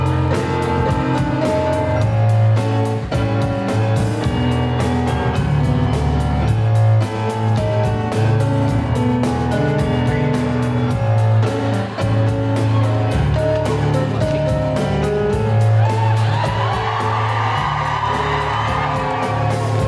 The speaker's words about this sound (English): Big round of applause for the cast of Suffragette! Thank you so much for listening, guys.